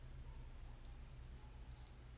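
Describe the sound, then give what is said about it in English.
A few faint, quick snips of the small scissors of a pocket knife trimming eyebrow hair, spaced irregularly over a low, steady background hum, with no one talking. “I trim my eyebrows with a pocket knife that has scissors in it.”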